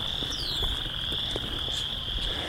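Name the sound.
frogs croaking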